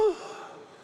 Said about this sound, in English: Now the tax collectors and sinners, this is where you all gasp.